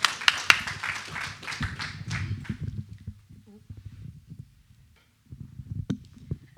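An audience claps for a couple of seconds, a dense burst of applause that quickly fades out, leaving soft low thumps and faint muffled movement afterward.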